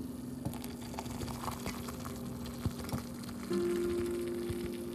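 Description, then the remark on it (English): A teapot settling after pouring coffee, with a soft watery hiss and faint bubbling, scattered light clicks, and a steady low hum that swells slightly near the end. No one speaks. “Coffee, cheers, my friends, as the teapot settles.”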